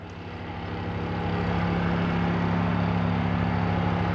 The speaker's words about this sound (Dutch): Nou, op die damwand, hè, daar komt een hele grote kraan met een heiblok. En dat heiblok dat zit als het ware bovenop die damwandplank. Hè. En die begint te trillen en door die trillingen komt er energie in die damwandplank.